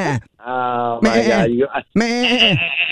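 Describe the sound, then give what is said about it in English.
A person imitates a goat, letting out three loud, quavering bleats, each wobbling in pitch and separated by brief pauses. “Well, I don't have a lot of practice bleating like a goat. Try it one more time.”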